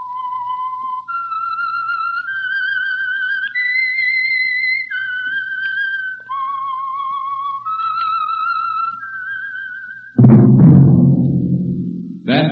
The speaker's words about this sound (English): Whistle is your signal for the Signal Oil Program, The Whistler.